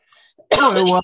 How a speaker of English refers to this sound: I'm having real issues with my cough still. The problem is I keep hitting mute and sometimes I get it and sometimes I don't and I can't control it. So the coughing, not the muting.